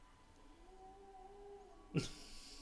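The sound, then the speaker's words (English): A person imitates a wolf howl with a soft, sustained, slightly wavering tone that lasts over a second, then it cuts off into a brief, louder breathy burst. “Let me howl like a wolf.”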